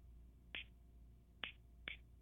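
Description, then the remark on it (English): Three crisp finger snaps in an uneven rhythm, fairly loud, with a short gap after the first and the last two quicker together, over a faint low hum. They are snapped by someone holding a phone, tapping out the rhythm of the words 'would you be my friend?' “I'm holding my phone, so I'm going to snap my fingers.”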